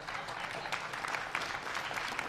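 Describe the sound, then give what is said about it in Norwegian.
An audience applauds steadily as the speaker's wife is welcomed onto the stage, a dense crackle of many hands clapping with no voices standing out, holding an even level throughout. “Kan jeg få en ekstra applaus for deg?”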